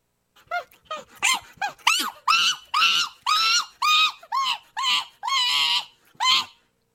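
A capuchin monkey calls in a rapid series of about a dozen shrill, whistling, squeaky cries, each rising and falling, loud with no other sounds around.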